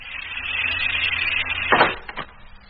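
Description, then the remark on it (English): A vacuum seal on an uncoupling section being broken after the air has been pumped out: a steady airy hiss, then a sudden loud rush of air as the seal gives, followed by two quick clunks. “Now to break the vacuum.”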